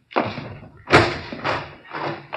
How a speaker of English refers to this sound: Fine. Here, I'll get the door.